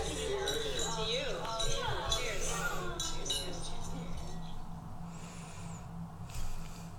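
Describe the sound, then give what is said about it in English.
Glasses clink together in a toast, a few bright ringing taps over a steady low hum, with people chatting and murmuring. “Cheers to you. Cheers.”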